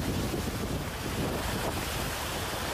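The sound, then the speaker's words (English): Roaring wind from Hurricane Ian buffets the microphone in a steady, loud rush, with churning floodwater and surf-like wash underneath, in Florida; no voices are heard. “As Hurricane Ian battered communities, dumping several feet of rain that socked the Sunshine State.”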